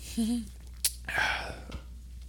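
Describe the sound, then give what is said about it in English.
A person drinks water in the style of Steve Austin: a brief hummed vocal sound and a sharp click, then a burst of splashy, slurping noise as water is gulped and sloshed, fading into quiet breathy sounds. “I'm going to drink it like this.”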